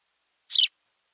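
A single short house sparrow chirp, bright, heard alone against silence with no other sounds or voices around it.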